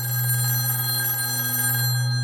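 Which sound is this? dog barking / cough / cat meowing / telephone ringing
telephone ringing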